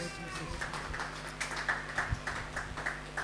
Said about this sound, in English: Oh, clap your hands for the Lord Jesus.